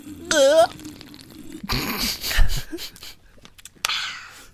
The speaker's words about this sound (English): Hey, was that me coughing? It wasn't me. I can't believe you just have like every noise I could make.